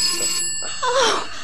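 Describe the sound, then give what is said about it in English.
A telephone bell rings in two short bursts separated by a brief pause, sounding clear, with no one speaking. “Oh, the phone's ringing!”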